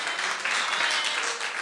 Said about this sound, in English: You may be seated with a clap offering.